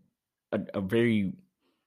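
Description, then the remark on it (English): A single drawn-out vocal yawn, voiced and tonal with rising harmonics, lasting about a second and fairly loud, like a person imitating a whale's low moan. “a very interesting whale sound.”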